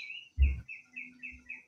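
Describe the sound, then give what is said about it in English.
Birds chirp in a backyard in a steady, repeating series of high, bright calls, about six short phrases in under two seconds, with a low thump and faint hum beneath. “What's going on besides the birds chirping in the backyard?”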